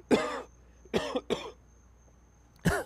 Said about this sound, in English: Excuse me for a little coughing break here.